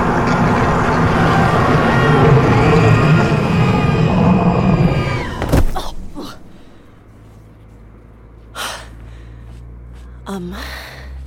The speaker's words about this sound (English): Do you hear that? No! All I can hear is you shouting over the sound of that approaching hell portal.